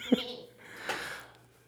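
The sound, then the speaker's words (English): A person makes a short, nasal sheep-like bleat with their voice, followed by a breathy, wavering vocal sound. It's fairly quiet, with no words spoken. “Why are you making sheep noises?”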